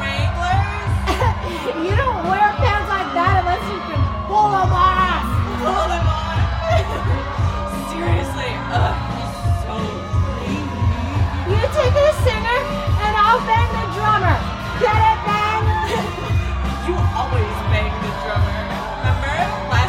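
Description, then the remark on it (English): A dense, steady murmur of many overlapping voices fills the space, loud and continuous throughout, with no single speaker standing out from the crowd's chatter. “I lost you in the crowd.”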